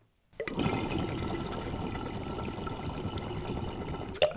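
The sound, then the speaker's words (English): Water churns and bubbles inside an XL double-diffused glass water pipe, a juggernaut, in one steady, fairly loud stretch of about four seconds, ending with a brief sharp knock. No one speaks. “Similar, but you can really hear the water volume moving in the juggernaut.”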